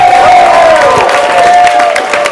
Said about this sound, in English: Start clapping right now. Get the energy up.